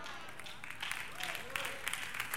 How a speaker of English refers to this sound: I know it's eight claps, that's all right.